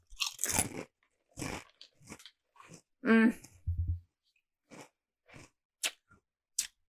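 Loud crunching of Kettle Brand salt and vinegar kettle chips, a series of sharp brittle bites and chews spread over several seconds, with a short voiced hum in the middle and no words spoken.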